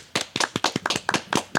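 Audience applause welcoming a guest, made of sharp, separate hand claps, about ten crisp bursts in quick, slightly uneven succession, fairly loud, with no voices over them.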